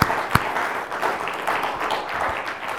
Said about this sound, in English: We should give God a round of applause because of Corey's ministry.